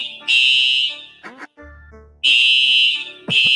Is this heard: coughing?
no